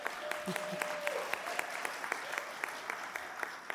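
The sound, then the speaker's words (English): An audience applauds steadily, many hands clapping together in a dense, continuous patter at moderate volume, with a few sharper individual claps standing out throughout. “And this deserves applause.”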